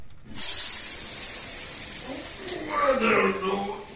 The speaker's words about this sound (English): He was hungover, singing in the shower. I recorded it and I brought it to you. And this is how it sounded.